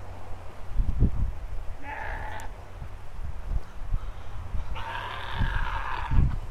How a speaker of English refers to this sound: They just propagated. Exactly. couple generations of goats here. Yeah. I had eight of them up in August. So eight babies in August, they was always born.